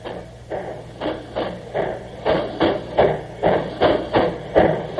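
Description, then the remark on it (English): An old steam locomotive rolling along, its chuffs coming as a steady, even rhythm of breathy bursts, roughly two each second, over a continuous low mechanical hum. No one speaks. “This is the way a real ancient, a genuine ancient, the oldest train existing in America, built in 1855, sounds.”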